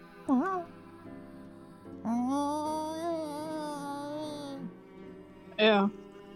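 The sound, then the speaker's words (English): Three close, drawn-out meows, seemingly a human voice imitating a cat: a short yowl, a long wavering cry lasting a few seconds, then another brief, rising meow. “you start hearing a familiar sound. Is it a cat?”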